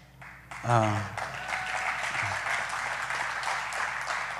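An audience breaks into steady, sustained applause lasting several seconds, a dense wash of clapping that holds at an even level, with a brief vocal exclamation near the start.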